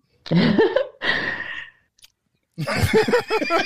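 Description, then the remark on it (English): A short slurping sip of a barrel-aged tart cherry beer, set between throaty murmuring vocal sounds, followed by an appreciative wordless exclamation after a brief pause. “I'll take a sip now.”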